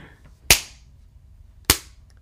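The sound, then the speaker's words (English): Two loud, sharp smacks of a man's hands struck together, about a second apart, mimicking punches landing in a pretend fist fight on camera. Each is a crisp slap with a quick fade, and the background is otherwise quiet. “If you didn't know, he is hitting his hands together trying to make a punching noise.”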